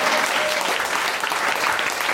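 A steady burst of audience applause, many hands clapping densely and evenly at a fairly loud level for a couple of seconds, with no voices standing out.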